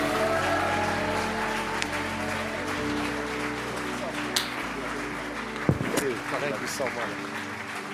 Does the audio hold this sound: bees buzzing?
no